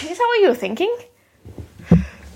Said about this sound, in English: Oh, God, I just... Bless you. Oh, I always do a little wee. Yeah. Pregnancy. Every time you sneeze, you pee a little.